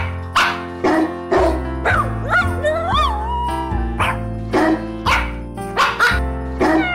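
Dog barks pitched into a jaunty Christmas carol melody, sharp rhythmic yaps landing on the beat over a steady musical backing, with a wavering howl sliding through the middle of the tune.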